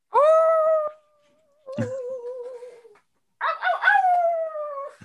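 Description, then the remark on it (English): A person's voice imitates a wolf howl in three sustained, wavering calls with long pitched tones and rich harmonics, separated by short silences, loud and alone without talking. “Like if I start making wolf sounds”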